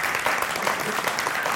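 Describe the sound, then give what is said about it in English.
An audience claps together in a steady, dense patter of many hands that holds at an even, moderate level for the whole moment without building or fading. “Once again, give him an applause, thunderous applause.”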